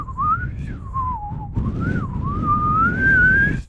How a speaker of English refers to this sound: Now I'm going to whistle you all to sleep after the trumpet's over.